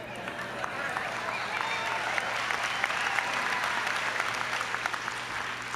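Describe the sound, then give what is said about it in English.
An audience applauds the bees of a bee-learning experiment during a talk, steadily for several seconds, a dense, even wash of many hands clapping with occasional sharper individual claps standing out, no voices heard. “This, yeah, let's hear it for the bees.”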